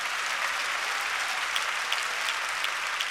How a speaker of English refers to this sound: Why don't you clap your hands and give some praise to God?